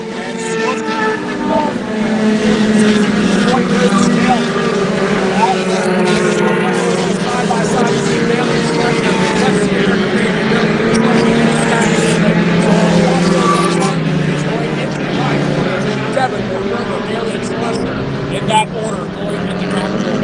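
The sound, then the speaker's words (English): A loud, steady roar of several race car engines accelerating together at the green-flag start on a road course, their pitches rising and overlapping as the pack, led by Devonport with Romer on his tail, comes around the Sunset turn for the whole stretch. “And here they come around Sunset. Green flag almost right away, and there we go.”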